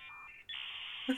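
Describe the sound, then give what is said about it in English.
A dial-up internet modem connection tone: shrill electronic tones shift pitch, then give way to a steady harsh hiss, with a brief low blip near the end. Loud, with no voices. “The dial-up tone are from you the internet.”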